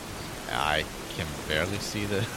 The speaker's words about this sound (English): I can barely see anything. All right, so it's pouring rain.